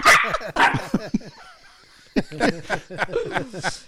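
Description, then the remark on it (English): A small Chihuahua dog yaps in rapid, high-pitched, loud barks in two flurries separated by a brief lull, with no talking. “every time we say Sean, I'll put a little Chihuahua bark”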